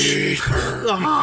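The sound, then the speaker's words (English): A man growls at a microphone, a short, rough, gravelly voiced imitation of Darth Vader's menacing tone, lasting about a second with no words. “I think you just growl at the microphone.”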